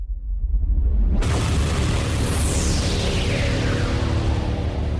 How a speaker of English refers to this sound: There it is! The sound of tempest!